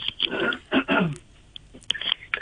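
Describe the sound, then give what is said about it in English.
A person on live radio clears their throat in a couple of harsh, raspy bursts, followed by quieter mouth clicks and small swallowing noises. No one speaks. “I just need to clear my throat.”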